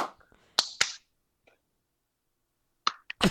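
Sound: two hand claps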